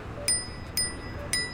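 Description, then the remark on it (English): A small handlebar bell on a motorized scooter rings three times in an even rhythm outdoors in Washington, D.C. on a sunny day, each bright metallic ding lingering briefly over faint outdoor background noise. “So now I'm looking at this scooter trying to figure out how the heck to unlock it. I got a bell.”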